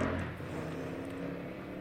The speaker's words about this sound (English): Motorcycle engine. Okay.